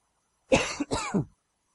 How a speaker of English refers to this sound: I'm going to have to cough here, so excuse me.